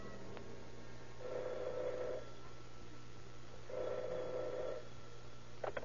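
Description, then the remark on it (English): A telephone at detective headquarters rings twice late at night in steady bursts, each about a second long with a pause between, heard fairly clearly over a low background hum. “The investigation is checkmated until late that night when the operator at detective headquarters receives a strange phone call.”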